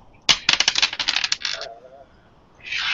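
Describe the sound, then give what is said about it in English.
Dice are rolled across a table for a listen roll during a tabletop role-playing game. A sharp first hit is followed by a quick run of bright, clicking clatters that slows and fades over about a second, then a soft hiss. “Can I roll?”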